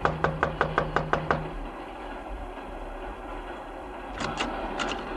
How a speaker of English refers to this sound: Just knock on the door.